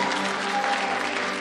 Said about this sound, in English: And you can clap for her too.